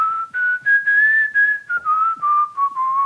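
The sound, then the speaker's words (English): A clear whistled melody of the Christian hymn Great is Thy Faithfulness, moving through slow, sustained notes in a gentle phrase, each note separated by brief breaths, fairly loud with no talking. “And he was whistling a Christian song.”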